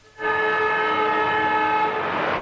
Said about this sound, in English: There's Williams going down the ground looking for high and went up in the air for Fitzroy, but there's the siren.